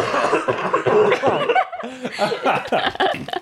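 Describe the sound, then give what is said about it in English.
Several people cough and sneeze at once, loud, their harsh overlapping bursts piling into a dense, ragged chorus with bits of voiced laughter mixed in. “Just the chorus of coughing and sneezing for all of us at once.”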